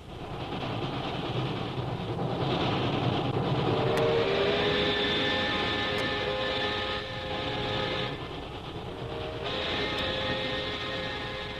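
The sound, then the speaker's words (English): A moving train bound for Calcutta rumbles steadily and loudly from inside a carriage, with a faint metallic whine and occasional sharp rail clicks over the continuous roar. No one speaks. “we find Jungle Jim and Shanghai Lil on a train bound for Calcutta”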